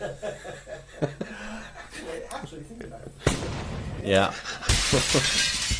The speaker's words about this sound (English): If that's a window smashing, it might be let some air in there.